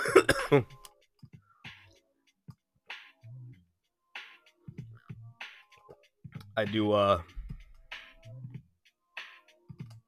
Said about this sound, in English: I do apologize about the coughing and being out of breath. I am still getting over COVID-19. I'm still not feeling 100%.